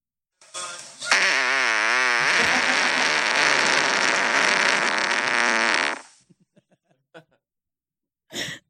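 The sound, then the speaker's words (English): A long, loud recorded real fart played back, number 127 in a numbered collection of favorite farts: a sustained raspy blast lasting about five seconds with wavering pitch, followed by a few faint ticks and a brief burst of noise. “And that'll be the last fart I'll play.”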